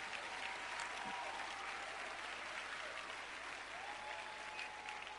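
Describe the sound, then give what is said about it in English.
A crowd claps steadily for several seconds, a dense, even wash of many hands with no pauses, and faint voices mixed in underneath. “Those who are not clapping are suspects.”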